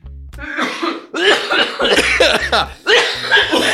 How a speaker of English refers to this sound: cough break. Yeah, cough break.